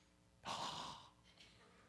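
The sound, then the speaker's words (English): Someone blows out one strong, breathy exhale, imitating Jesus breathing on his disciples, followed by a softer trailing breath. No one speaks. “Jesus breathing on his disciples.”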